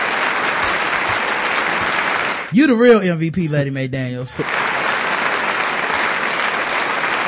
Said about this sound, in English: she need a standing ovation. Yeah, where is my sound effect?